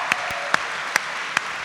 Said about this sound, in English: Big hand of applause for Ben, everybody.